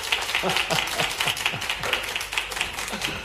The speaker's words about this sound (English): Let's have a big round of applause for our very own Father Dougal McGuire.